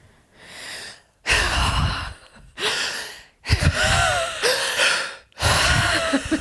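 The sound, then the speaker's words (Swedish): A person breathes in an exaggerated, heavy way, like Leif G.W. Persson, with about five loud, drawn-out huffing breaths separated by short pauses, some carrying a slight groaning voice. “För att jag andas som Leif G.W. Persson hela tiden.”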